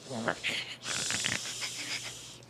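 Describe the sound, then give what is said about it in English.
A person imitates a dog's snoring with a few wheezy, snorting breaths and soft nasal grunts, fairly quiet, lasting a couple of seconds with no words. “My dog snores. Well, dogs do usually do that, so... Her snores are funny, though, because they're just, like...”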